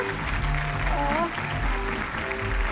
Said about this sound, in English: let's have a big round of applause for the hungriest being in the house, folks.